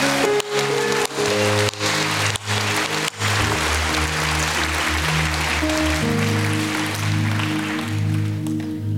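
An audience claps and cheers for God in dense, continuous applause with scattered shouts of praise, loud, over sustained organ or keyboard chords.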